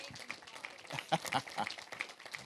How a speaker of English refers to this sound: If you're going to burn for Jesus, give Jesus a hand clap.